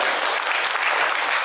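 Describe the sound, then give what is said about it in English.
A round of applause at Trinity church for the organist, dense steady clapping with no gaps, fairly loud and sustained across the whole moment with no voices over it. “How about a round of applause for our organist?”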